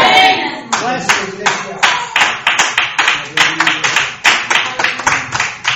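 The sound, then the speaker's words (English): A church audience applauds in sharp, steady claps that fall into a rough rhythm, loud and sustained for several seconds after a brief murmur of voice at the start. “Is that an applause?”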